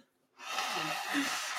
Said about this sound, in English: While you guys are doing that, I'm going to blow my nose.